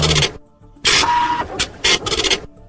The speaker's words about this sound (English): All right, that is a dot matrix printer, with one of those ones where it has the printer paper on the side and you have to tear off the little dot matrix.